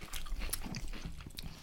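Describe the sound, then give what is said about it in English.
Crisp crunching as beef bouillon cube flavored crinkle-cut potato chips are chewed, a rapid run of irregular crackles and snaps with no talking. “Oh, the beef bouillon cubes. They are crunchy.”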